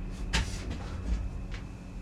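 back door opening

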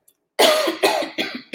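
cough

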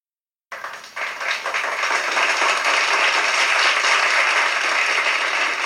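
hands clapping

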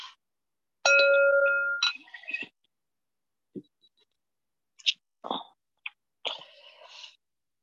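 bell ringing

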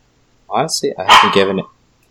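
dog barking

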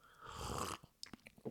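sipping coffee

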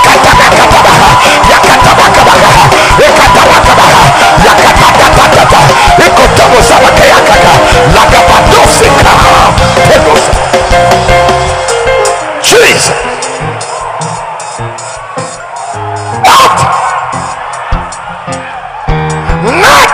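audience shouting

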